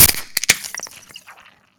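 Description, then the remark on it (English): A bottle of Guinness being opened: a quick hiss of gas, a couple of sharp metallic cracks as the cap comes off, then a few faint clicks and a fading fizz. “I have my trusty pint glass, and I am opening up.”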